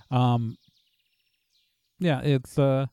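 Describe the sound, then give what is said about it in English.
A voice imitates birds chirping in short warbling bursts, with very faint chirps in the quiet gap between them. “Like there's a river walkway to your left, and it's just eerily quiet except for the sounds of like some birds.”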